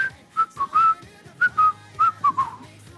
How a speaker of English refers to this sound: See, whistling can be really annoying.